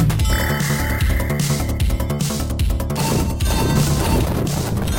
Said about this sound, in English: Yeah. I love the explosions, because they've got that Mega Drive explosion where it's just really like...